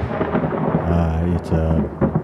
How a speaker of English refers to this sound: I think it's raining outside.